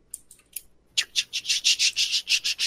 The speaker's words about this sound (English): They're old, like, clockwork mechanisms. They're loud and clicky.